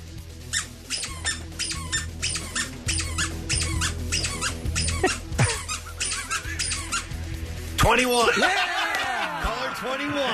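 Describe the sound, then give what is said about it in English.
A handheld squeaker squeaks over and over in a quick, steady rhythm for several seconds, loud, the number of squeaks picking the number of a radio caller, before giving way to chattering, laughing voices. “Use your squeaker.”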